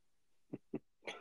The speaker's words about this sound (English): These fucking dogs.